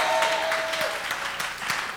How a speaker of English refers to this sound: And all those who are clapping, may that exchange favor you.